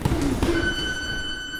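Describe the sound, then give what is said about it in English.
A three-minute round timer buzzer at a boxing gym near Calle with Mercado, signalling the young boxers to change activities, sounds a steady, harsh, buzzing tone that begins about half a second in and holds unbroken to the end over a low background rumble. “That buzzer you hear, by the way, is a 3-minute timer that tells the young boxers in the gym it's time to change activities.”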